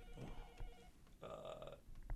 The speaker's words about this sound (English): Is that my phone? Yeah, it is your phone. Who's calling me? Who's calling me? That's not ESP. That's caller ID.